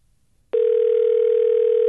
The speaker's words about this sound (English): I think we should give him a call. All right. It's ringing. Okay. I hope he picks up.